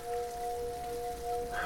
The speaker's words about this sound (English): bizarrely beautiful frogs and listening to their chiming and trying to soak up this rain